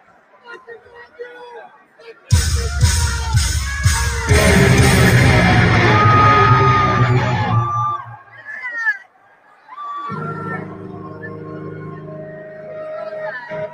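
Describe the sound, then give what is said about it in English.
A man yells loudly over a roaring, cheering concert crowd, the din swelling suddenly and then cutting out, followed by quieter scattered shouting and crowd noise. “You're this douche screaming.”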